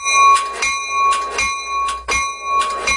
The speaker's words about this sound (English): I don't even think the button works, to be honest with you. I think that bell rings whether you hit that button or not.